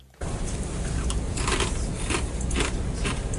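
Loud crunching of afternoon potato chips being chewed, recorded from a desk about 6-8 feet away, with repeated crisp bursts in an irregular rhythm over a steady background hiss, no voices.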